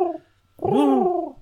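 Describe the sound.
A person imitates a pigeon's coo with one drawn-out, throaty note that swells and then falls away. It is fairly loud, following a brief trailing vocal sound.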